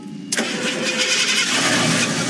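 A truck engine cranks and catches after a brief moment as three teens in Hardin County work to get their truck going, then settles into a steady, rough rumble with a broad roar continuing to the end. No one speaks.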